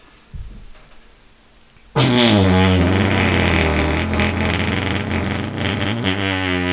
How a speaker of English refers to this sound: That's about right. That's a long ass fucking fart. Holy shit.